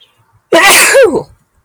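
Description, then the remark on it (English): A single loud sneeze erupts after a short silence, a sharp breathy burst lasting under a second before fading back to quiet. “I may sneeze here.”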